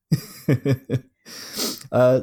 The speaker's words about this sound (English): Oh, geez. I'm the same. I had a cough and a cold, and it's just all coming out now.